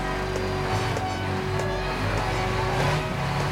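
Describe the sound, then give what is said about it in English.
A large bus engine, on a bus bound for New York City, runs steadily: a loud, continuous low rumbling drone with a faint mechanical whine on top, holding even throughout. “Bus for New York City. Hey, bus driver, I'm getting on that horse.”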